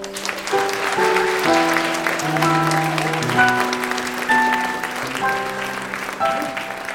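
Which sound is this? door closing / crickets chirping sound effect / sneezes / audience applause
audience applause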